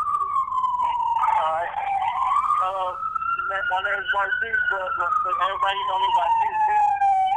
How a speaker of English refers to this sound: Hold on, I'll let them sirens go by.